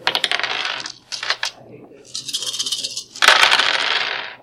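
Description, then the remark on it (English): Dice clatter and roll across a hard tabletop in several loud bursts of rattling, skittering clicks, each settling briefly before the next handful tumbles, as players roll for skill checks in a tabletop role-playing game. No one speaks. “Man, how the heck does WD-40 get that many dice?”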